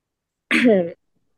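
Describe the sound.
A single short, rough, fairly loud cough, with a noisy burst that turns throaty and voiced before cutting off, followed by silence.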